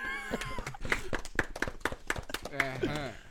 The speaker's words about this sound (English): Will you clap for him?